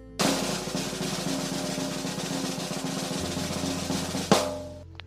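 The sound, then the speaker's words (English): A steady, rapid snare drum roll runs for about four seconds at an even loudness, then ends in a single loud crash that rings out and fades. No one speaks over it. “This is blizzard conditions expected, total snow accumulations, drum roll, please.”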